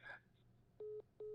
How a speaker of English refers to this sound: Oh, wow. Damn. His phone dropped.